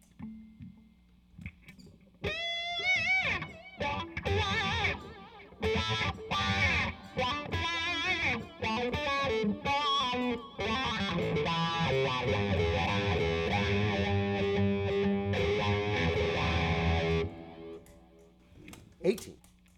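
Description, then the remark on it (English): A distorted electric guitar, played on the bridge pickup, plays loud, dense phrases for about fifteen seconds, its tone sweeping and vowel-like as if filtered by a wah pedal, then cuts off abruptly. “Let me try the distortion.”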